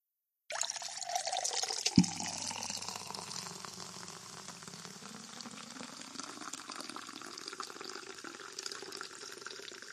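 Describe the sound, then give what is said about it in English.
Spindrift sparkling water pours steadily into a glass of Monkey 47 gin, with a soft clink near the start, then a continuous bubbly hiss whose pitch gently shifts as the glass fills. No one speaks. “And I'm going to pour some Spindrift into this Monkey”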